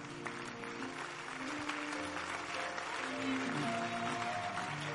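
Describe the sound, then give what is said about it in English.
A large crowd claps steadily and loudly throughout, a dense, continuous wash of applause with voices and some sustained tones mixed in beneath it. “You better clap because God's thinking process is about to zero in onto you.”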